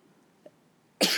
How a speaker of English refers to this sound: Bless you. Thank you. Look, I sneezed on it.